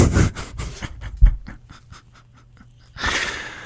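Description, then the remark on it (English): The speaker's dog scratches at a door in a quick, uneven series of rasping scrapes, loud at first, thinning to lighter strokes, then a harsh burst of scraping at the end. “I can hear you scratching the door, man. My dog is so fucking needy.”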